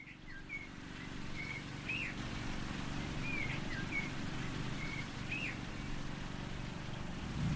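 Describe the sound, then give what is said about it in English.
Birdsong chirps and whistles at intervals over the steady low drone of a motor mower tending some 4,000 or more graves outdoors in the Bayou Commonwealth War Cemetery, with no voices. “In this corner of the Bayou Commonwealth War Cemetery, you can hear birdsong, the sound of a motor mower, carefully tending some 4,000 or more graves.”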